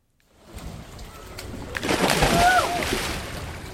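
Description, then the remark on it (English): Lake water in Minnesota laps and sloshes steadily in summer, a soft continuous splashing that swells midway, with a brief bird chirp rising above it. “Hear the lake water lapping.”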